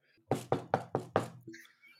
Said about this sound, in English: That was me knocking on actual wood, everybody.